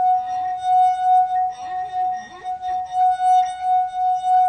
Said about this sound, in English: just rest your finger on the rim and rub it around. OK, so this is one of those well-known party tricks where you play the wine glass